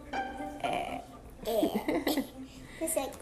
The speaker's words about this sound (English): her whiskers were as full as my tummy," added Jujubee, burping.